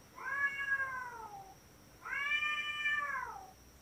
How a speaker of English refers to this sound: Grace, can you add in just some audio of cat sex?